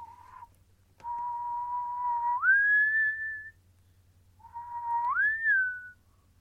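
A person whistles a slow, eerie tune: long sustained notes that glide upward, in two phrases separated by a pause, clear with no talking.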